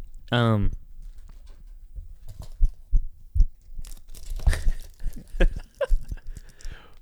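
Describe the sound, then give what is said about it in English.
A brittle honeycomb chocolate bar is snapped in two to share, giving a run of sharp cracks and crackly crunching over several seconds, after a short vocal sound at the start. “That's a good split.”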